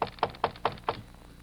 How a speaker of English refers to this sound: It is late afternoon as a tall, well-dressed man climbs to the third floor landing. He walks down the hall to the door of apartment number 7. He knocks.